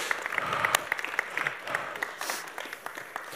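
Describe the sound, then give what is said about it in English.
A crowd applauds steadily, a dense wash of many hands clapping with scattered sharper claps standing out, holding a fairly even level throughout before easing slightly toward the end. “Now, the rest of us, and every time we hear this, I want us, let's just applaud and celebrate people and give thanks for the role that they play.”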